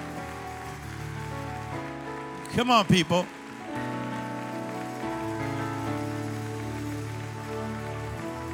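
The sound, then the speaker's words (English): An audience claps steadily, a dense, even wash of many hands that carries on throughout, with a man's voice briefly calling out over it near the start. “Clap your hands like that's true, okay?”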